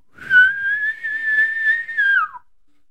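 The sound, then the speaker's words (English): A voice imitates an elk bugle through a tube, with a lot of growl: a gravelly, growling start rises into one long, loud, high whistling tone that holds for about two seconds, then slides downward and stops. “I let her rip, put a lot of growl in it, just that.”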